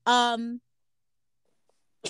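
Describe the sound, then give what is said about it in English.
A single loud sneeze with a strong voiced tone lasts about half a second, followed by near silence before another sound begins right at the end. “excuse me. Oh, God bless you.”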